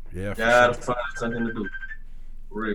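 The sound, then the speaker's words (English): A cell phone chirps out a short run of electronic tones, a steady pitched beep lingering for about a second, mixed in with voices talking over it. “Whose cell phone is on?”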